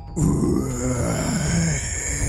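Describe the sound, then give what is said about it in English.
A man's voice growls low and gravelly in one sustained, rumbling snarl lasting about two seconds, imitating the deep feral growl of a spore-infected creature that used to be Gato in a tabletop role-playing game, fairly loud and steady throughout. “So he would know that this definitely came from you, and he stares back at you with this feral animosity and this deep growl of this...”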